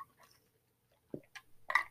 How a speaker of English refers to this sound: Imagine if the world of dating, pardon me, let me get a little sip of water here.